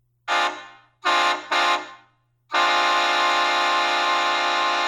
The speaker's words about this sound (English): I forget what kind of train horn my buddy had, but there's like the Shocker XL.